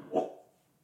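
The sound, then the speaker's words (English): A single short dog bark rings out near the start, moderately loud, then fades quickly into quiet with no one talking. “yes, dog.”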